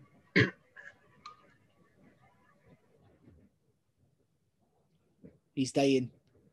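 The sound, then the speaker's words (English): A short, sharp cough bursts out early, followed after a quiet stretch by a louder, rougher cough with a throaty, voiced edge. Faint murmuring sits in the background between them. “Yeah, that wasn't coughing at George Ford, by the way.”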